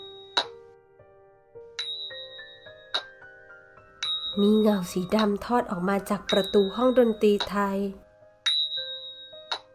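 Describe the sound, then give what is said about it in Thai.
Thai ching cymbals sounding from a Thai music room strike repeatedly at a slow, steady pace, each hit a bright metallic clink that rings out with a high, lingering tone. A person talks over the middle strikes. “จู่ๆเสียงดนตรีไทยก็เงียบไป แต่มีเสียงฉิ่งดังขึ้นมาแทนพวกเราทั้งคู่หยุดเดินอีกครั้ง”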